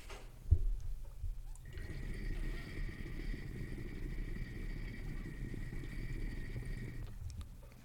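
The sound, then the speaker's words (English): Vigorous water bubbling and gurgling through a bong percolator with a splash guard, the water stacking up through little pillars. It starts after a short click, rumbles steadily for about five seconds with no talking, then cuts off abruptly. “Like, once the water stacks up through the little pillars, like, it's bubbling up here too. So there's a lot of bubbling going on.”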